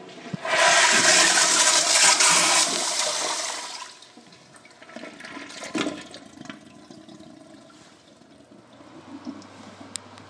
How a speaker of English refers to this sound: All right, here's the toilet flushing in Iowa.